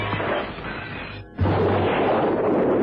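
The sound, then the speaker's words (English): A parcel bomb thrown at a window explodes with a sudden, loud blast that follows a brief lull, rocking the room, then a dense roar of debris and shattering window glass that continues to the end. No one speaks. “Holmes lobbed the parcel at the window. The explosion rocked the room.”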